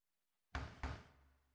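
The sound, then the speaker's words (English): Two firm, heavy knocks on a door in quick succession as a food delivery arrives, loud, each leaving a short ringing decay, with silence before and no voices. “Spirit, if you're trying to give us a sign, please knock one more time.”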